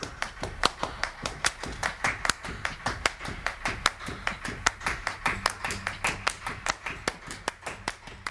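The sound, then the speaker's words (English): Steady rhythmic hand clapping with sharp, evenly spaced claps during a live stage performance, accompanied by a low resonant thump of a foot tapping on a wooden stage, fairly loud with no talking. “You can hear someone's foot tapping on the stage.”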